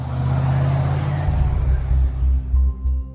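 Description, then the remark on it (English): Speeding police motorbikes sweep through the streets of Cornwall in the morning: loud engines roar past, a steady rushing drone with shifting engine pitch, then the noise drops and lower rumbling engines continue as more bikes follow. “Speeding police motorbikes swept through the streets of Cornwall this morning ahead of US President Joe Biden's arrival for the G7 summit.”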